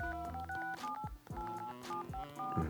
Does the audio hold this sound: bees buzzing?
no